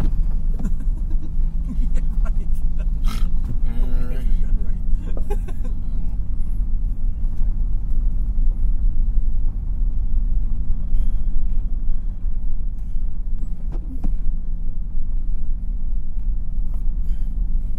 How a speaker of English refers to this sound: There is a big, sort of like what Jeff is describing, big ass truck with big ass tires.